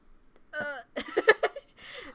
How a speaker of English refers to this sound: I can force burp. Can you do it? Hold on.